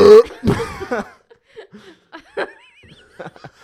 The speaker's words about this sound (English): Maybe we'll just cut out all the silence and just go to the burps. That burp was silly. It was silly.